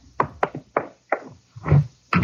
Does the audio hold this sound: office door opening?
yes